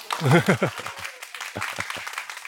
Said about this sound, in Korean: 자, 박수.